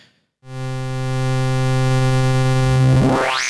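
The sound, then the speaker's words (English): A buzzy, distorted modular synthesizer patch drone starts after a short silence and holds steady and loud, then a resonant filter sweep near the end makes it screech sharply upward in pitch. “The Schlob still has that cool distortion and heavy resonance. The Wasp still has that like overtone sound, and the multi-mode VCF has that high-pitched screech.”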